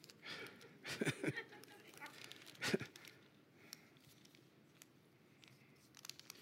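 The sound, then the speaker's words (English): A paper Walmart receipt is crumpled and torn: a cluster of crackly, rustling bursts, one sharp rip a moment later, then faint scattered crinkles trailing off. “It's my Walmart receipt.”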